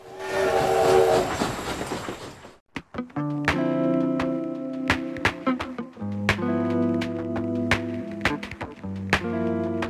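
A train rumbles along the tracks, then its horn blares in long, loud chords while wheels click rhythmically over rail joints. No one speaks.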